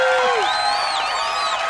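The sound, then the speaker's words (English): A big burst of crowd applause with cheering, played as a sound effect, loud and steady throughout, with rising and falling whoops and whistles riding over the dense clapping. “Now we need the big applause, Kevin. There it is.”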